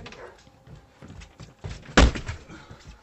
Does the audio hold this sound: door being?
yes